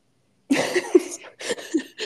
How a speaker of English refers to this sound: I have to cough. I'm still fighting this cold.